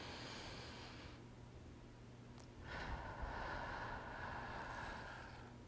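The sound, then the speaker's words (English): A short, airy inhale in triangle breathing is followed after a brief pause by a longer, steady hissing exhale, fairly soft, with no talking. “So the idea behind breathing like this in a triangle breath, where you only breathe for one of the sides and exhale for two, is that you're releasing more CO2 out of your body, which will let your heart rate slow down”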